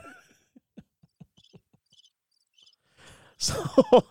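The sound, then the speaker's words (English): Soft cricket chirps repeat in small, evenly spaced bursts against a quiet background. Near the end, a sudden louder, busier burst of sound cuts in. “Can I get the cricket sound, please?”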